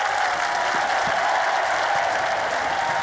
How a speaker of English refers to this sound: Two teams would enter the arena to the deafening roar of the crowd.